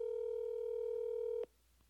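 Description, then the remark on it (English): A steady electronic telephone tone hums loudly from a speakerphone for about a second and a half as a call is placed, then cuts off abruptly with a small click, leaving quiet line noise. “I wonder if I call her right now and put her on speakerphone”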